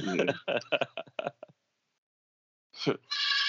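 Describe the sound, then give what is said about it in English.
A goat lets out a loud bleat right at the end, following a burst of speech-like sound and a brief silence. “Oh, is that the goat?”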